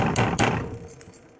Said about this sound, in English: So, beat on the door.